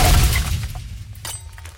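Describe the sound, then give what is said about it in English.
A frozen drink machine is pulled down at a gas station and crashes to the ground with a loud, booming impact that rumbles and fades, followed by a few scattered clattering knocks as debris settles. “pulled a frozen drink machine to the ground and was attempting to drag it”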